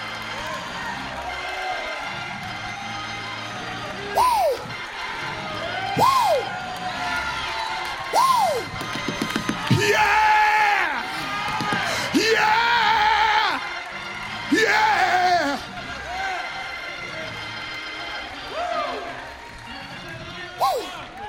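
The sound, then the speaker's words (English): A church audience shouting, cheering, running and blessing the Lord, with repeated rising whoops and loud bursts of crowd noise over a steady, dense background of many voices. “Them saints are shouting. They're running. They're blessing the Lord.”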